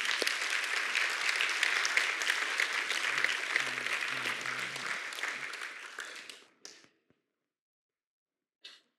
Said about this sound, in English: I want you to stand. Prayer partners, come quickly this morning. Let's clap our hands to Jesus Christ one more time.